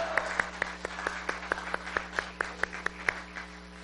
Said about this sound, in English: Could we just shout hallelujah and give the Lord a big hand clap? Hallelujah!